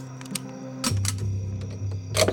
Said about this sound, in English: The faint sound of clicking metal continued from the window.